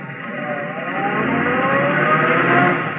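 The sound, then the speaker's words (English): A car engine starts up, then steadily revs and accelerates as the car pulls away to follow a cab, its droning pitch rising, a continuous rumble with no voices. “I ought to be ready for her, in my car halfway down the block.”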